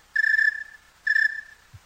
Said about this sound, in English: Well, there's one type of tree cricket. That's it. Okay. That's a snowy tree cricket on a cool evening.